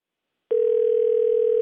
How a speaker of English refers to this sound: Yeah, hang on a second. I got to mute out the phone while I'm dialing the number.